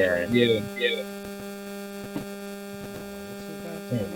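Steady electrical interference on the line: a constant low buzzing hum with faint crackles and occasional clicks, fairly quiet, running throughout with no one speaking.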